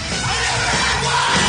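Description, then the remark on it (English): A loud, dense roar of a live crowd yelling and whooping together as a song builds, sustained and steady throughout, like an excited audience cheering at full volume. “Really like any song that builds to just a wild crowd yell.”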